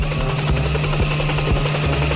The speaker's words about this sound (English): get that copter and let's go.